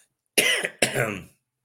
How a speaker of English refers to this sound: Sorry for the listeners for me coughing, but my throat's killing me.